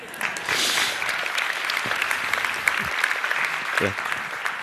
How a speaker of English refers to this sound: So I was expecting a round of applause at that point.